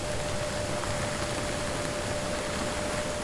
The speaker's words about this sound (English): Also recorded a lot of ship noise,